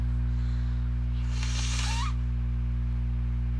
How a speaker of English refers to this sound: Yeah, I want them to get all the nose blowing. Say what? I want them to hear all the nose blowing.